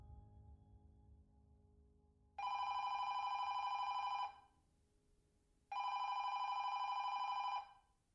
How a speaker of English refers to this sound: Tracy's father answered the phone after three rings, and he listened gravely as detectives delivered the news.